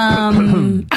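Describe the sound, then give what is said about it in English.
A single throat clearing: a low, strained voiced rasp held for most of a second, sliding slightly downward, then ending in a short breathy huff. Fairly loud, with no talking. “It's just me clearing my throat.”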